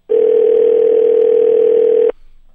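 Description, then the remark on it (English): A steady telephone dial tone hums at a constant pitch for about two seconds, loud, then cuts off abruptly into near silence, as a call is placed to Dave Attell. “Let's get Dave Attell on the phone.”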